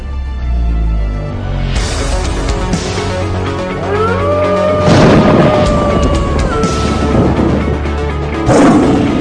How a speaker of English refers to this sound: But just as Jack was beginning to open his mouth to respond back to the king, the earth shook, the building shook, and the roar of the Lion of Judah came forth, which meant this.